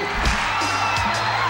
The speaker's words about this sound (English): They clapping this shit. Got the soul clap with it.